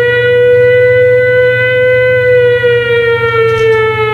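A loud alarm siren wails on one steady, sustained tone that sags slightly lower in pitch toward the end, with a low rumbling drone beneath it and no voices.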